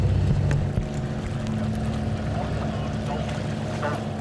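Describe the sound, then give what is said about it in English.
A motorboat engine drones steadily and loudly, its low rumble constant throughout, with a wash of wind and water noise around it, as the boat heads out from Sea Houses Harbour to see seabirds. “Boats just slowed down to a halt, and just all around us now there are the backs of bottlenose dolphins breaking the wave.”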